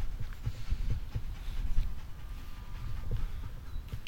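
A dog pants in quick, breathy bursts that keep up a steady rhythm over a low rumble of outdoor background noise, with no one talking.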